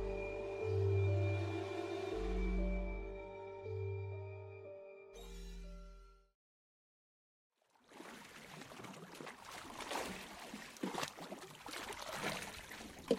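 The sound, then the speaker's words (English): After a sustained musical chord fades to brief silence, oars of a rowboat carrying a passenger splash and churn steadily through water, with irregular dips and sloshes continuing to the end. “Why must you row me there?”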